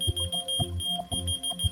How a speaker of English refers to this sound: One product we know, we call the key finder. Do you know the key finder? Yeah. If your key lost, you know, you can whistle. And then that device responds with a beep.